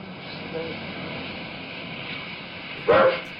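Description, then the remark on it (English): A single loud dog bark bursts out near the end, over a steady droning background hum that runs throughout. “And here's the barking noises.”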